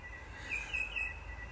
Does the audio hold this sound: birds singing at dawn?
yes